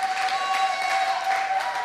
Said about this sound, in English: Yeah, it's okay to clap.